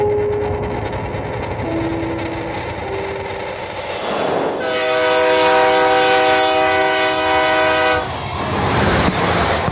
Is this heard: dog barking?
no